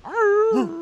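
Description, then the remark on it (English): A single short hound dog howl: a rising tonal wail that holds steady, then bends down and trails off, with no one talking over it. “Oh, yeah, they're a hound dog. They don't even bark.”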